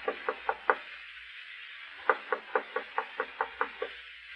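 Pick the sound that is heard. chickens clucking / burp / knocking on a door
knocking on a door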